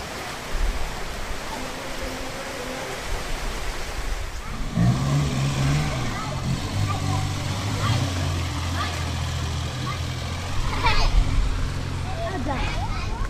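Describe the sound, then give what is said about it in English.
Steady rushing and sloshing of water fills a busy flooded street in Bacolod, with water pouring through shop fronts, faint voices of children playing in large puddles, and a vehicle engine rumbling by partway through. “Going through Bacolod, the streets, children playing in large puddles, shop fronts, just water pouring through.”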